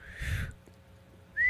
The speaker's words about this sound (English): Well, this I can't do the whistle.